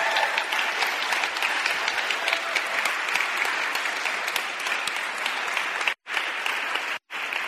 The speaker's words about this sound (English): Can we give her a round of applause before?